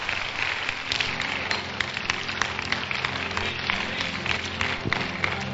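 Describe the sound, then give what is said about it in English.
An audience claps their hands together, a dense, steady wash of many overlapping claps filling the whole stretch at moderate loudness, with a faint crowd murmur underneath. “Clap your hands.”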